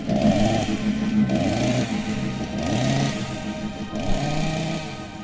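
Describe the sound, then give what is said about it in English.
A small chainsaw engine revs loudly in four repeated surges, its buzzing pitch climbing and falling with each pull of the throttle, with no talking over it. “We run a little chainsaw. Yeah, chainsaw's coming in.”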